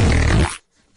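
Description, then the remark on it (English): A single loud, blaring fart lasting about half a second, rich and rumbling in the low end, cutting off abruptly into near silence. “Okay, so imagine that, except less Jurassic Park and more Jurassic Fart.”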